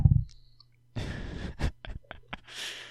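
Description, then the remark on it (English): Dry rattle of dice tumbling across a tabletop during a tabletop role-playing game, rolling a natural 20, followed by four or five sharp, uneven clicks as they bounce and settle, then a soft breathy hiss. No one speaks. “Dice are on fire. That's a natural 20.”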